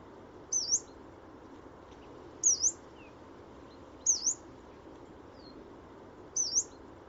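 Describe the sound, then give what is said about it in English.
A yellow-browed warbler gives four thin, high-pitched calls that dip and rise again, spaced roughly two seconds apart over a steady wash of background noise. “So first you'll hear coltit, and then you'll hear yellow-browed warbler.”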